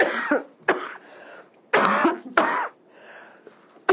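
cough

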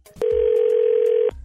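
telephone ringing

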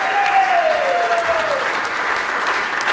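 applause

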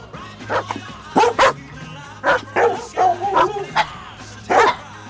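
dogs barking

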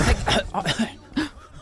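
cough

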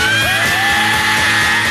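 rock singer screaming

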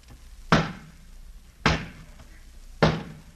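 knocking on a door

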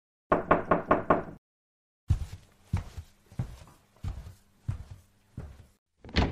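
knocking on a door

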